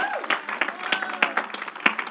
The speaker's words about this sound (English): Come on, give the Lord a praise in the house. Come on, man. Put your hands together and give the Lord a praise.